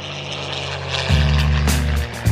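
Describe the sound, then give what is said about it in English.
A loud airplane engine drones steadily, its deep rumble swelling partway through as if the aircraft passes overhead, with no voices present. “Going to the friendly skies, where airplanes emit about a billion tons of carbon dioxide every single year.”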